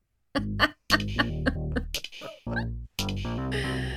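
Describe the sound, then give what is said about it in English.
A bird calls loudly inside a room in a string of squawking, voice-like bursts, several short cries followed by longer, harsher screeches, with no one talking over it. “Oh, we gotta pause. Get the bird out.”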